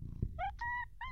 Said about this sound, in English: Oh, Jesus, got a I got some fright. The cat. Oh, we've got one of the cats in question.